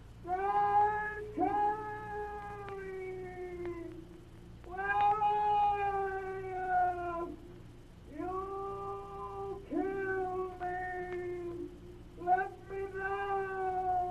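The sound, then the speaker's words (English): A coyote howls in a series of about five long, wavering cries, each rising and then sliding down in pitch, with short pauses between them and no talking over them. “Sounds like a coyote.”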